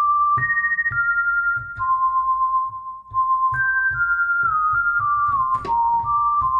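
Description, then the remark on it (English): A pure, whistle-like sine wave synth, the Microkorg whistle sound loaded from MS-2000 SysEx data and used in Metroid Prime, built from two sine waves, plays a slow melody of held notes that step and glide between pitches, riding over a soft, steady low beat. “That exact whistle sine wave sound.”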